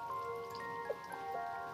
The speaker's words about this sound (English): What do you know? It's 50 degrees and hailing.